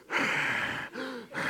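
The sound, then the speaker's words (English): A voice imitates loud, heavy breathing, the way someone breathes while watching TV: a long raspy inhale, a short breathy exhale, then another inhale, forceful with no words. “You get sick of people you live with and love and care deeply about, but there are times in your life where you cannot stand their breathing.”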